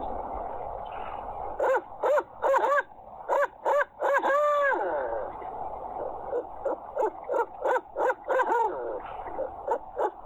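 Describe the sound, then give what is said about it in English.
A person imitates an owl with a loud series of rhythmic hooting calls, delivered in quick bursts and phrases over about ten seconds, with no talking, as an entry in a judged owl-hooting contest. “And here's my best owl hoot.”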